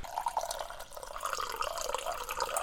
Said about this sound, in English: Just gonna do a little coffee pour up close and personal to whet the appetites of the ears.